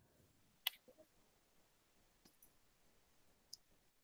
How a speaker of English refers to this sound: you type so fast. It's impressive.